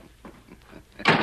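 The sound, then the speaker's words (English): A door shuts with a loud, broad thud near the end as a man leaves, after a few faint shuffling knocks. No voices. “Show him the door, Bill. Stay where you are. I'm going.”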